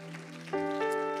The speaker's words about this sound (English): Let's give the Lord a hand clap of praise all around the room.